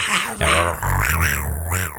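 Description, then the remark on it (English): A panther growl sound effect, as played for an unseen pet panther in a comedy-mystery show: a loud, raspy, low-pitched snarl rising and falling in a few rough bursts over about two seconds, with no talking over it. “And every time they played the panther sound effect, it was like the Carolina Panthers sound effect.”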